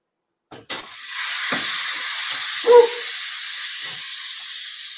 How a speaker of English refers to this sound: And I'm going to pour in some boiling water, but be really careful because it's a hot pan, but the water is hot as well.